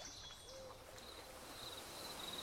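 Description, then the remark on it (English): A single soft, brief owl hoot rises out of a hushed night ambience, with faint high insect chirps running steadily in the background. No one speaks. “You thought you heard something other than the hooting of an owl, but when you really focused, you weren't able to hear anything.”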